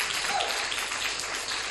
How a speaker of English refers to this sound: Okay. I'm a very good teacher. Clap for me. Clap for me.